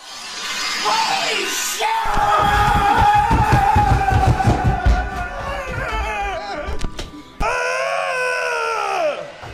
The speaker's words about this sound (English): And this is about when it becomes grown men yelling at brown Play-Doh.